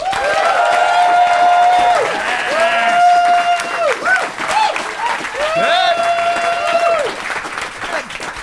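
A live Phoenix audience applauds loudly and steadily for several seconds to make the final decision in a debate contest, the dense clapping mixed with rising whoops and cheers from the crowd.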